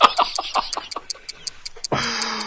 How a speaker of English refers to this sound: Anyway, that ticking is indeed the doom clock.